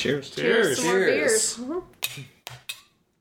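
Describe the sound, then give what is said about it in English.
Voices say "Cheers" together briefly, followed by three sharp, bright clinks of glass against glass in quick succession in a toast, each ringing off quickly into silence. “Cheers.”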